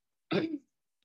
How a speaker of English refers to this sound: excuse me, I'm clearing my throat here.